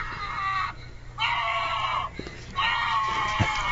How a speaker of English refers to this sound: Can you pick that up? Yeah, it sounds like a guy yelling. Sounds amazingly familiar.